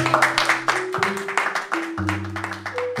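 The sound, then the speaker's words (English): A crowd applauds with dense, continuous clapping, loud and steady for about three seconds, while sustained low musical tones play underneath. The applause welcomes the speaker Rob Norman at the start of a talk. “Massive round of applause for Rob Norman.”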